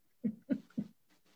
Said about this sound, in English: I love the sound of the dog. It sort of breaks up the. It's a bossy dog. That's what. Yeah. Telling everybody in the neighborhood what to do.